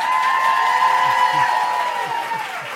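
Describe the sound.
An audience at a live Q&A recording applauds in a steady, dense wash of clapping mixed with cheering voices and a high whistle-like tone, holding loud for nearly three seconds before easing slightly.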